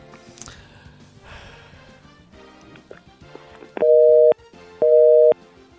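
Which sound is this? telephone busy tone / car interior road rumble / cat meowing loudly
telephone busy tone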